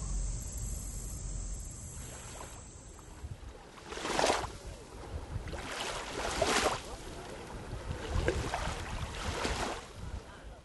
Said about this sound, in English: What you're hearing right now are the waves of Lake Michigan.